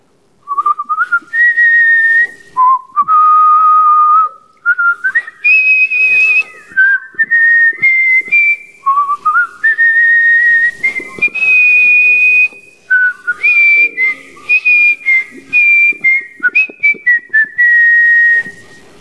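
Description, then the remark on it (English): A speaker and audience whistle a familiar, march-like movie theme tune together, the bright melody rising and stepping through held notes in steady phrases, loud, with no talking throughout. “And so I'm going to whistle a tune. And the minute you recognize it, join me in the whistling.”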